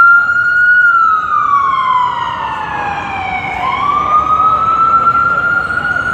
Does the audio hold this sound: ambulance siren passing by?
yes